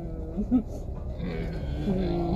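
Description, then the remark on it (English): A voice imitates the sputtering engine of a car with no bumper, a low, wavering growl that stutters and rises in pitch over a couple of seconds, moderately loud and steady. “His car just looks like it's making the permanent noise of like.”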